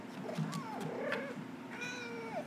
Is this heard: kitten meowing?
yes